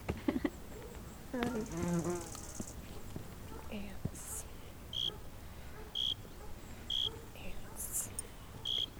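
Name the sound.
swarm of bees buzzing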